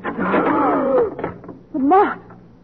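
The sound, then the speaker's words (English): A door creaks open with a long, wavering hinge squeal lasting about a second, followed by a shorter, rising creak; loud, with no talking. “Where does that door go? Into an all the least outside. Right, open it.”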